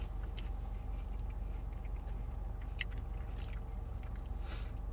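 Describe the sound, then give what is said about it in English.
Loud crunching of a crisp churro with a cinnamon sugar filling being chewed, with repeated sharp crackly bites over a steady low hum and no talking. “The crunch on that one. That is a ridiculous crunch.”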